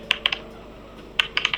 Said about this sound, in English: Roll D8 damage.